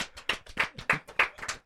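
human body sound, hand clapping

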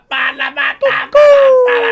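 sound effect, rooster crowing sound effect

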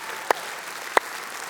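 crowd, audience clapping

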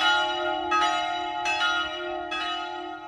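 signal or alarm, church bells ringing

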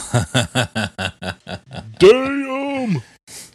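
human body sound, belching

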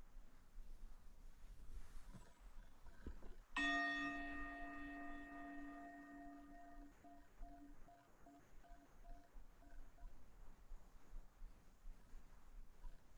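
signal or alarm, meditation chime ringing

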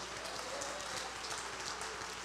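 crowd, audience clapping hands

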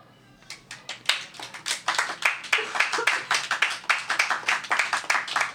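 crowd, audience clapping

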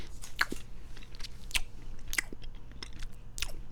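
food or drink, chewing candy

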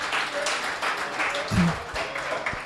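crowd, crowd applauding

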